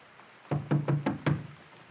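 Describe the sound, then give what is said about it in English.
Five firm knocks rap on the wooden door of a small visitors' hut at a prison camp, in the rain, in a quick, slightly uneven rhythm, fairly loud, with quiet stillness before and after; no one answers. “No one is answering. Let me try the door.”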